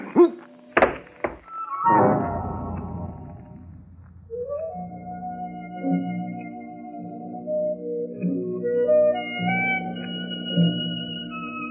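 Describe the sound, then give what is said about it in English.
A couple of sharp knocks give way to a heavy, booming thud as a man on a gravel path is hit on the head and knocked out; it rings out and fades, followed by low, sustained droning tones with no voices. “If you're hit on the head hard enough, you get knocked out.”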